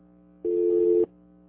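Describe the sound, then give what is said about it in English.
A single steady telephone busy-signal tone sounds for about half a second over a low electrical hum, clear and fairly loud, then cuts off abruptly. No one speaks. “Okay, Broward Lines, he said they're all open, those 4, 5, and 6. Look at this. He said they were busy.”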